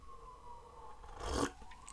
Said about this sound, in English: Sirens. I promise you, I have lived in the hood, and I have not heard as many sirens living in the city of St. Louis than I do here living out in the burbs.